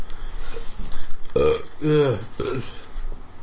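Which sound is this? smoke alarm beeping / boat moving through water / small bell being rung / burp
burp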